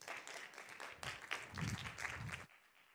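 A round of applause from a crowd: dense, steady clapping of many hands that swells briefly and then cuts off abruptly, leaving near silence.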